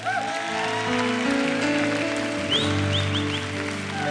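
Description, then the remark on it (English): A church audience applauds and cheers steadily during a service, a dense wash of clapping over sustained music, with a few whoops and whistles rising near the end. “Let's give these people a big hand as they come on down.”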